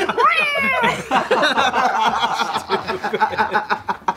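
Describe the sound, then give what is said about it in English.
A single drawn-out cat meow rises and falls at the start, followed by a stretch of overlapping voices and chuckling laughter that fills the rest of the moment. “I'm allergic to cats, that's all I know. I was like, okay, get that cat out of there.”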